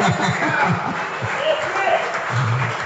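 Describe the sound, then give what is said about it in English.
A crowd applauds steadily, the dense clapping filling the space as a broad wash of sound, with a few voices and scattered laughter mixed underneath. “That's why you keep clapping, you guys.”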